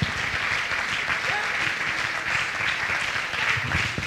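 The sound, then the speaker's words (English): An audience clapping their hands together to praise God at a Wednesday night worship service, a dense, steady wash of many overlapping claps with some voices mixed in underneath, holding at an even, lively level throughout. “Let's clap our hands and praise him today.”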